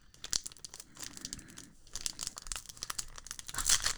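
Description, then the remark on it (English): The foil wrapper on a limited edition Upper Deck pack of three cards is torn open, with irregular crinkling and sharp ripping bursts over several seconds, ending in a louder tear. “Oh, yeah, you can hear that sound. That's a real unwrapping.”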